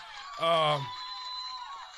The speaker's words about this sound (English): I guess the crowd got excited. Yeah, they felt it.